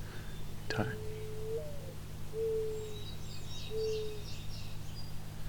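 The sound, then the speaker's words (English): Three soft, low-pitched cooing notes from a mourning dove, sung from its puffed-up throat without opening its mouth, evenly spaced and drawn out, with a sharp click early on and faint higher chirps of other birds. “It's a fairly quiet bird in general, the species. When it sings, very low pitched.”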